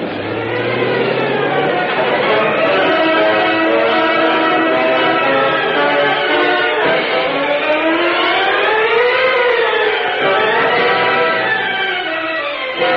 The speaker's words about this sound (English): Parked in a dark alley across from the entrance to the Associated Grocers' offices, Britt Reed and Cato watched with interest as police cars continued to arrive in answer to the radio call. Many police come in response to call, Mr. Britt.